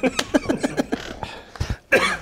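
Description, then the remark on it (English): A person coughs repeatedly: a quick run of short, harsh hacks, then a brief pause before a few heavier, rougher coughs. “Is that from the dab? Am I coughing?”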